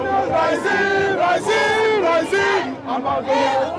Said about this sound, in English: Okay, and this seems to be protest alley. Of people shouting, waving flags, and shaking placards.